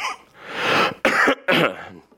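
A loud fit of coughing and throat clearing: a long rasping clear followed by two sharp, harsh coughs in quick succession, with no talking.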